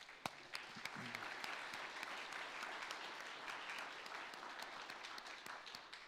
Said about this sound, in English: And I want to give them a round of applause.